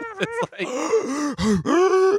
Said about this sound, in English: Actually, speaking about me gasping for air,